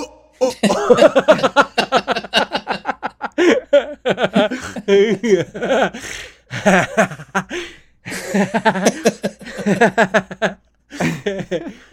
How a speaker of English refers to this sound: Yeah, and we go down in history for the first coughing music. First song without a single word, just all coughs. Musical coughing is born.